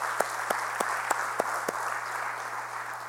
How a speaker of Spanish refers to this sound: Y la iglesia dice, podemos darle un aplauso al Señor, aleluya.